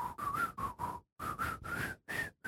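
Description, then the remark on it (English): A breathy whistled tune played badly, with airy, hissy notes in short bursts, a brief pause midway, then several more uneven notes. No one speaks. “It's like the worst whistling job I've ever done.”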